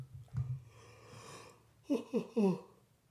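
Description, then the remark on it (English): A long, breathy drawn-in yawn, moderately loud, ending in three short voiced groans that slide downward in pitch. No talking. “Had to get that fucking yawn out.”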